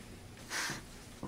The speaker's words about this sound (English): He's sniffing panties.